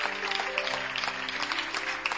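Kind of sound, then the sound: crowd, audience clapping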